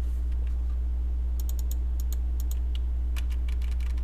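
A quick burst of computer keyboard typing, entering the name Scott Clemenson into a game: sharp key clicks in irregular clusters, starting after a short pause and continuing to the end over a steady low electrical hum.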